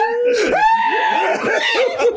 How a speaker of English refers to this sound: He screamed his ass off. While still talking shit.